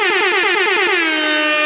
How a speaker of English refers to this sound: Hold up. Wait, before you say anything else, air horns.